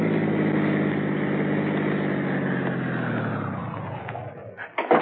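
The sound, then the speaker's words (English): A taxi's engine hums steadily, its pitch gradually dropping as it pulls around a corner in a residential area and slows to a stop, then settling into a low idle with a few clunks near the end. “Driver. Yeah. End of the line. Pull around this corner and stop.”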